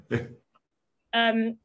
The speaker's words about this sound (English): We have a dog. We have a guest dog.